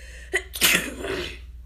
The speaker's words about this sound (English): Yeah, hold on. I just sneeze.